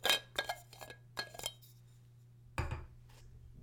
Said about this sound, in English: Okay, let's open the bottle. First time I've had this. Just a screw cap.